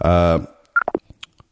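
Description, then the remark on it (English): A loud, steady electronic phone tone sounds for under half a second, then fades into a few quick clicks and short blips as the signal of a Facebook phone call drops live on air. “So the signal has dropped live on the air, guys, but it was a great conversation with”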